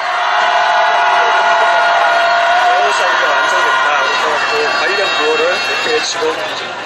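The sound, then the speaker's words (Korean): A large crowd at a candlelight rally in support of the bereaved families of the Itaewon disaster roars and cheers on cue in a sustained, loud wave of shouting, many voices blending into a dense wall of sound that holds steady for several seconds. “네, 우리 이태원 참사 유가족분들의 힘을 주기 위해서 다시 한번 함성 들어보겠습니다.”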